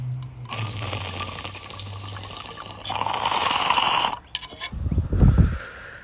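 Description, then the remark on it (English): Water bubbles and gurgles continuously through a large bong during a hit for several seconds, loud, with a low rumbling churn that swells near the end before a final burst. “And so this bong is also like, I feel like it's huge. It's such a fucking chugger.”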